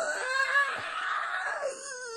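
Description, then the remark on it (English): A voice imitates a long, strained cry of pain, a sustained wailing yell lasting about two seconds, loud, with no other sounds around it. “And the louder I yelled, the harder he laughed.”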